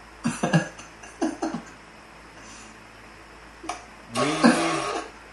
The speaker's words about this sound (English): What the fuck? Did you just rip your pants? I found a soundboard. You found the soundboard of just farts? Yeah.